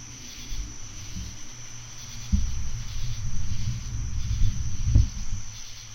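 A steady, high-pitched chorus of crickets trills through a quiet night forest, with a soft low rumble swelling beneath it partway through and a brief thump near the end.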